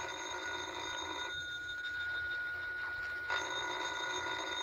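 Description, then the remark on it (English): A telephone bell rings in two bursts separated by a short pause, a bright metallic trill heard clearly, with no voices over it. “Well, ain't you gonna answer the phone?”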